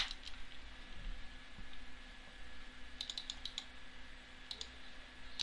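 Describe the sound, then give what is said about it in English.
Computer keyboard keys clicking in short, irregular bursts of quick taps, fairly faint, over a steady low electrical hum with no one talking. “I'm having a keyboard problem, I apologize.”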